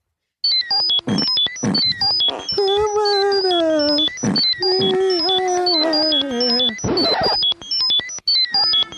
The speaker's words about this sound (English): So that is Sorry, that's computer noise and two fart noises from your soundboard layered over your falsetto singing.